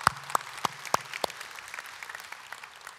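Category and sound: crowd, audience applauding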